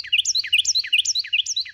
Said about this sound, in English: Wrens aren't the only small birds with big voices, but they are the best known for this ability. How can a bird like a Carolina wren, all of 5.5 inches long and weighing only as much as 4 nickels, produce so much sound?